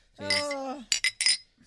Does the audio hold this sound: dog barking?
no